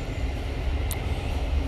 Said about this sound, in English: as the Thames Link zooms over the railway bridge.